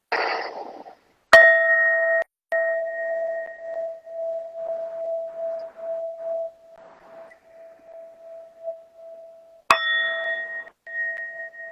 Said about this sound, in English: So I'm going to go ahead and chime us out three times. With each chime, take a deep breath, set your attention for the rest of the day.